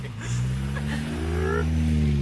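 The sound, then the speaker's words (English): A voice imitates a car engine driving off, like the sound on The Simpsons, a steady buzzing hum that rises in pitch as if accelerating away, sustained for a couple of seconds. “And then you just hear drive away.”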